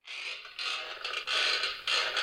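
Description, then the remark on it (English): A wooden rocking chair creaks in long, strained groans, several drawn-out creaks following one another in a slow back-and-forth rhythm, fairly loud with no voices. “This old lady would spend endless hours at her rocking chair, just staring out the window.”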